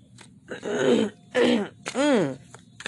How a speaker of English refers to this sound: I cannot stop clearing my throat.